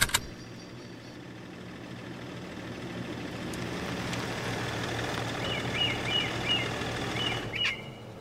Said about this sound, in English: For now, I have to figure out where the hell I am and if that noise my car is making signals an impending explosion.